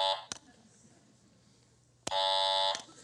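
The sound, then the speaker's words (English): A harsh, loud electronic buzzer blares twice: a short burst at the start, then a longer sustained buzz after a quiet pause, with faint low background noise between. “And as soon as you do, God buzzes you.”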